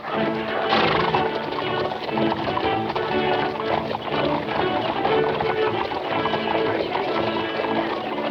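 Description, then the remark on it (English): Lively orchestral hunting music with brassy horn lines over a bouncing, galloping clip-clop rhythm, loud and continuous throughout, with no voices. “So the hunting music with horns and very clippity-clop, clippity-clop kind of rhythm.”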